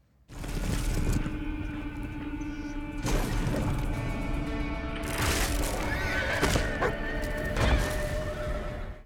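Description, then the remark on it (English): A Clydesdale horse in a television commercial neighs loudly, its whinnies rising over a steady clatter of hooves, with a few sharp knocks and crashes mixed in; no one speaks. “The advertisement shows an injured Clydesdale working through setbacks with help from a vet, a stableman, and an attentive dog.”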